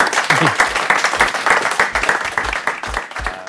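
Sustained applause from an audience after a Friday Lunchtime Lecture at the Open Data Institute, many hands clapping in a dense, steady patter that holds at a fairly loud level throughout without any voices rising above it.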